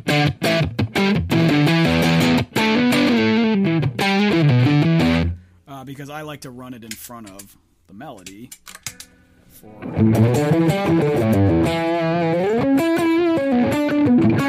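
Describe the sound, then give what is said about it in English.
Buzzy, heavily distorted octave-fuzz electric guitar, played through a fuzz pedal with swappable boards and set bright, plays a loud melodic line, stops for a brief spoken remark, then returns with another sustained, saturated phrase. “it boards that you pop in and out, and each one is designed with a different fuzz sound.”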